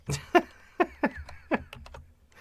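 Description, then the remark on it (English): Typing on a computer keyboard by a woman, the producer: about half a dozen crisp key clicks in an uneven rhythm, moderately loud, with no one talking. “She's typing at us.”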